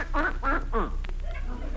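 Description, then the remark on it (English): A duck named Henrietta, asked to spell cat, quacks three times in quick succession, short nasal honks, followed by a few softer, fainter squawks as the sound trails off. “I'll take that silly duck out for a walk again”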